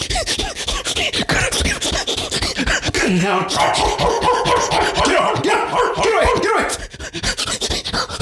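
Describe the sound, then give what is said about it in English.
A man's voice imitates a cyclist being chased by a barking dog, performed as an impression in the game the Wheel of Impressions. It has loud, rapid yaps and growls mixed with panting and frantic sounds, continuous for several seconds. “A guy on a bicycle being chased by a dog.”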